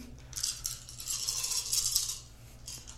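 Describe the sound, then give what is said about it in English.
A handful of dice, rolled for a stealth check in a tabletop role-playing game, rattles and clatters continuously for about three seconds, a dense, bright clicking with a low steady hum underneath and no voices. “The soothing sounds of dice.”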